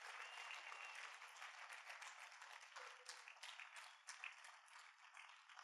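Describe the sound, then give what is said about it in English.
A large audience breaks into sustained applause for their pastors, a dense wash of many hands clapping steadily for several seconds, with a few sharper claps standing out near the end. “Give your pastors a great hand of applause here tonight, would you?”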